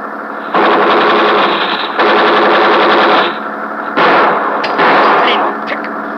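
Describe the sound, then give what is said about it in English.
Sustained bursts of rapid machine-gun fire, loud, in several long volleys separated by brief pauses, with a rattling, mechanical rhythm, fired in front of a man to slow him down. “Fire in more! We fire in front of him.”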